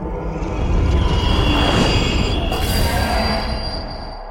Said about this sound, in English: The radio slipped from his grasp and rolled under his bed as the shadow moved over the house, a venomous screech following closely.